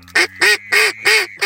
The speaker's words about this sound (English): Frig, they're friggin' ducks.